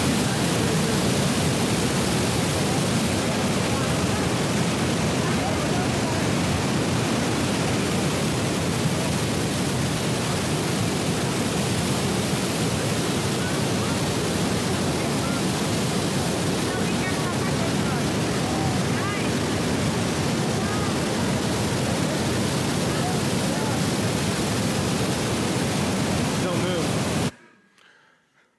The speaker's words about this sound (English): So this is the River Jordan in modern times, because they didn't have HD cameras back then. I don't know if this was a flood. I just Googled River Jordan flood, and this is what came up.